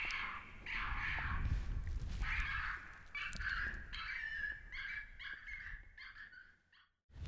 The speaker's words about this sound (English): You notice I switched to a different sound. This is a coyote distress, and a lot of times they just can't, even if you've already fired a gunshot, if you switch over to this one, they'll come right back in.